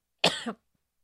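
A single sharp cough bursts out loudly with a raspy throaty tail, lasting about a third of a second, followed by silence.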